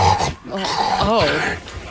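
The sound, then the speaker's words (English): A voice imitates a dog's wet, noisy slurping in a loud burst of gurgling, snorting sounds lasting about two seconds. “This slurping noise that was so freaking obnoxious.”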